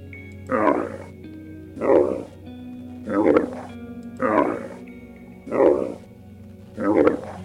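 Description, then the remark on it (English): A camel bellows in six loud, evenly spaced groaning bursts, each about a second long with a raspy, growling quality, separated by short pauses and a steady low hum underneath. “That's a camel.”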